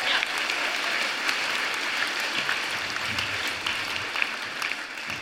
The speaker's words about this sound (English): Good work, everyone. Give yourselves a little round of applause. Yeah.